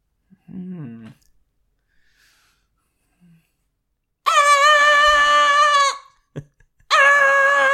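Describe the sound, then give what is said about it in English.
A voice imitates slasher horror movie stings, the sudden kind John Carpenter calls the "cattle prod": a brief low groan, then a loud, shrill, sustained screech lasting over a second, a short click, and a second harsh screech that breaks off abruptly. “But those are some of the sort of stings you might hear.”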